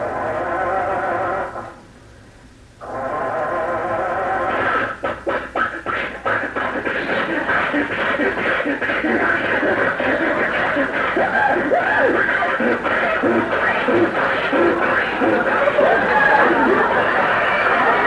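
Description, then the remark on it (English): An old car engine strains and sputters as it tries to start in February, a burst of rapid cranking pulses giving way to a long, rough, wheezing groan that keeps going without catching. “Gee, the motor seems to be laboring a little harder than usual.”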